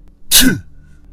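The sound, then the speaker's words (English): A single loud sneeze bursts out sharply with a hissy, breathy rush, then fades quickly into quiet. “Bless you.”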